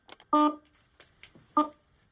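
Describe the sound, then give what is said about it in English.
Two short, loud electronic beeps from an attention experiment sound about a second apart, each a buzzy tone, with faint scattered blips and clicks in the quiet between them. “Like the beeps in this experiment, these sounds interfere with our attention, even though most of the time we are able to ignore them.”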